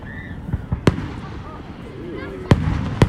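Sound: fireworks exploding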